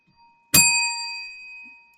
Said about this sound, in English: Let my bells speak for me.